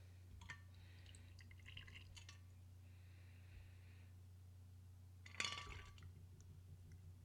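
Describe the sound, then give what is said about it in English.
A cocktail is strained from a shaker and trickled into a small shot glass with light glassy clinks, then a sharper clink near the end, all faint over a steady low background hum. “because your shaker should have a strainer, and we're going to put it right in, get out of the ice out of the way here, and we're going to pour it right into our little shot glass, and of course we'll take a shot.”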